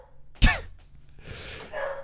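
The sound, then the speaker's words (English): A single sharp bark from a female dog barking at somebody backing a boat up, followed by a stretch of softer breathy rustling noise with no talking. “What is she barking at?”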